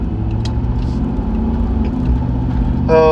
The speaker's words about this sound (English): Sorry, I'm driving around. It must be so frustrating to hear me, like, talking over the loud sound of the truck.